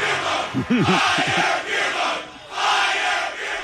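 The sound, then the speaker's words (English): A baseball stadium crowd roars and cheers a home run in a loud, steady wash of noise, with a few individual voices shouting out early on before the cheering swells again toward the end. “It's hard to argue with the crowd on this one.”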